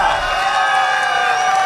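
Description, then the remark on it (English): A dense wall of crowd noise from the home crowd in Mildura at a Top Fuel racing event, many voices cheering and whooping at once for a driver's win, loud and sustained throughout without a break. “It has been a long time coming, and to do it in front of your home crowd, Mildura, make some noise for”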